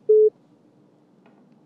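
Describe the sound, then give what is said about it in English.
A single short electronic video call request tone from a phone, a steady mid-pitched beep lasting a fraction of a second, sounds loud before fading into faint background hum. “Is this a video request? Are you requesting video?”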